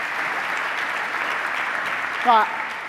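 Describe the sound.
Steady audience applause, a dense wash of clapping that holds at an even level throughout, with a brief voiced cheer or shout rising above it near the end.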